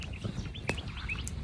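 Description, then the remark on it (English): Many birds chirp at sunrise in quick, scattered calls, some thin and high, over a steady low outdoor rumble, with a brief knock partway through. No one speaks. “And, gee, a lot of birds around, isn't there? Oh, it's bloody happy place, eh? You know, they're all chirping away.”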